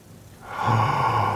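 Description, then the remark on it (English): A single dramatic gasp, a sharp audible intake of breath that swells quickly and holds with a slight voiced edge, fairly loud, with no talking around it. “Gasp.”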